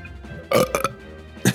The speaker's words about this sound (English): Nice. And with that burp, he's like, oh, crap.